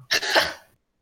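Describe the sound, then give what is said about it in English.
A single sharp sneeze bursts out suddenly, loud, with a breathy, hissing spray that trails off quickly into silence. No one speaks. “did … just sneeze or something?”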